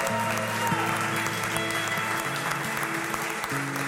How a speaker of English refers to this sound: Let's clap, church.